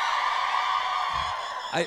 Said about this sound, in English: Yeah, that's the weirdest yell I've ever heard in my entire... Yeah. We don't even need the sound effects, guys.